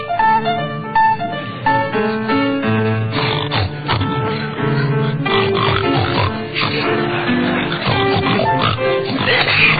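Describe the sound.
Several voices sing a melody entirely in pig-like oinks and grunts, imitating pigs in a loud, continuous, rhythmic tune with no ordinary words.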